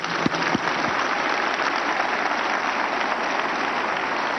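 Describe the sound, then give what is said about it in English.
A crowd claps for Jesus Christ steadily throughout, a dense, even wash of many hands with no gaps, after a few brief low tones at the start. “Clap for Jesus Christ.”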